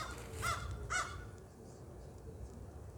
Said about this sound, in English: Did you hear the crows? I'm going to interview the crow.